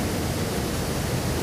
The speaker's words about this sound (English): I've got audio here of Niagara Falls. This is what it would sound like if you were standing under the falls.